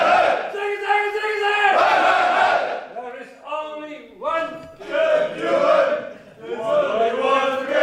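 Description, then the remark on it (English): A group of voices shouts and chants a rowdy team cheer in unison, half in Flemish and half in English, during a champagne celebration with Caleb Ewan; loud sustained bursts with brief pauses between phrases, rising and falling like a rhythmic rallying call. “The cheer in half Belgium, half English.”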